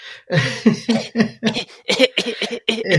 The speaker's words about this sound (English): But if you have a dry tickling cough, it's known as a tisk. Like when you make the sound tisk. Tisk.